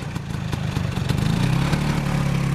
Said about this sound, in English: I bought the Vespa. A white 1982 P200, to be exact. Now I can drive alongside America's car culture with aplomb, straddling the cultural identity of my own choosing, and I can confidently go into the motorcycle parking lot and rev up the real deal.